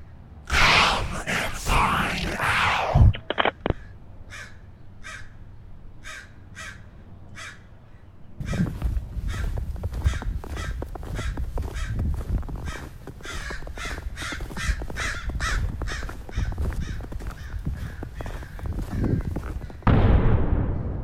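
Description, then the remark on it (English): A crow perched on a porch railing caws over and over in steady, evenly spaced calls, fairly loud, with a rushing, rumbling background noise running underneath for much of the time. “You hiding out in my field watching this stupid crow pretending to be calling me?”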